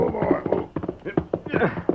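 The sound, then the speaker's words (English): Horse hooves clop a few uneven beats and come to a halt as the horse Silver is reined in near a house at night, followed by a horse's loud, wavering whinny. “We'll leave the horses here and go the rest of the way on foot.”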